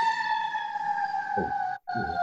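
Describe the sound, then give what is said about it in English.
An ambulance siren wails outside in a downtown area, a steady, fairly loud tone with a brief break near the end, sounding alone with no voices over it. “I heard an ambulance out there.”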